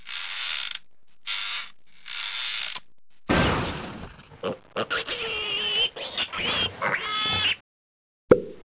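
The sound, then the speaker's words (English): In the game Angry Birds, three hissing creaks, then a sudden loud pop as a cartoon pig pops, followed by a run of squealing, oinking pig noises and the rattling, creaking clatter of a flimsy structure, ending with a sharp click after a short silence. “Gosh, the pig has literally popped.”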